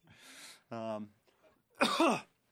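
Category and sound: human body sound, coughing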